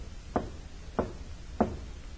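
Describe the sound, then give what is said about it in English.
A man knocks three firm knocks on a wooden side door of a building in a city warehouse section after 11 o'clock, evenly spaced about half a second apart, clear against a quiet background with no voices. “A man steps out and walks to a side door of one of the buildings. He knocks, pauses, then knocks again.”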